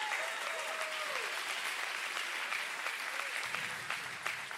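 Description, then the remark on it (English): An audience breaks into sustained, loud applause, a dense wash of many hands clapping together that carries on steadily for several seconds, with a few faint whoops or voices mixed in. “Another big hand clap goes there.”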